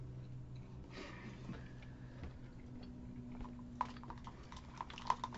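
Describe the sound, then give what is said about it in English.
Someone chewing food, quiet and steady, with soft irregular clicks and smacks over a low background hum; nobody speaks. “Probably wait until you're done chewing that, right?”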